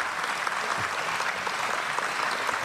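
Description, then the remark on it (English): Steady audience applause, a dense wash of many hands clapping at an even, sustained level for the whole stretch with no voices standing out. “I hope the applause means that you understood that that has something to do with the second law of thermodynamics and not...”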